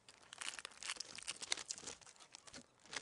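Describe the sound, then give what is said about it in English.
Sellotape is pulled off the roll and pressed down one side of a strip of A4 paper, making crinkly tearing and rustling noises in a steady run of small bursts, with no one speaking. “We sellotape down one side”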